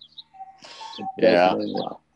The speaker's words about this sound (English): Uh-oh. Must be time for something. I have a cuckoo clock in my house about 60 years old that I inherited. Yeah, and it just I totally forgot it was in the house.